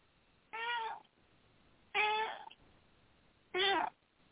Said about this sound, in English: And the cat sounds like she agrees. The cat just jumped up and is joining us here. I know. This is my talkingest cat.